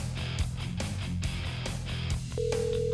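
Near the end, a single steady phone ringback tone starts up, clear and fairly loud over a continuous music bed. No one speaks.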